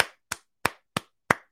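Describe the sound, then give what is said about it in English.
Five sharp hand claps at a slow, steady pace, each a crisp, bright smack with a quick decay and brief silence between, with no voices. “Fucking, let's clap it up.”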